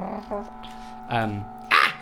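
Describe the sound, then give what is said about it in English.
A voice imitates a dog, giving three short, gruff barks spaced unevenly, the last one sharper and louder. “You bark at him. Yeah, it's not even a scream. It's a bark.”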